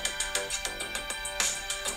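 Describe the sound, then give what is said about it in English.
A mobile phone ringtone plays a quick, bright electronic melody of repeated notes at a steady, brisk rhythm, fairly loud and with no voices over it. The vlogger's own phone is ringing during a vlog recording. “If anybody can name that ringtone, I'll give you $1.”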